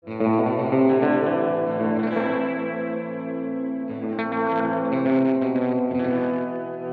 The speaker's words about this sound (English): This is heavy reverb with very little overdrive.